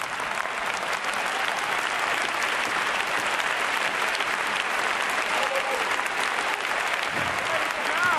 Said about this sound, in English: Don't clap too loud. Somebody might think you're dumb.